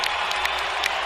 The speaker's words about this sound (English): and on senior night, the senior Canadian gets a well-deserved standing ovation.